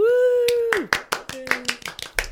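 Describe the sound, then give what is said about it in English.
Hand clapping: about ten sharp, crisp claps in a quick, slightly uneven rhythm. They follow a sustained tone that slides downward, and a brief low tone sounds under the middle claps. “Please give a warm Up for Discussion round of applause”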